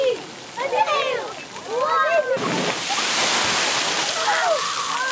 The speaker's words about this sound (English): Like, you wait for the bucket, and then like the bucket falls when there's too much pressure of weight. And then, like, there's, like, a big waterfall on you.